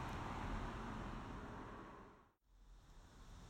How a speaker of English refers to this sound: I've never seen so much traffic on this road. I don't understand it. This whole county is supposed to be locked down, and every 2 minutes there's a motherfucking vehicle of some kind or other.